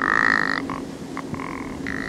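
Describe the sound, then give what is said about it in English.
A toad-like croaking creak, like the hinges of an old door opening and closing, heard in mist near the top of Sihalion: a raspy, mid-pitched rattle repeated in uneven bursts, some long and drawn out, others short clicks, over a steady low hum with no one talking. “I kept hearing this beautiful little creaking noise.”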